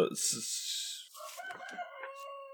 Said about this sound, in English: Hey, I just heard a wild chicken.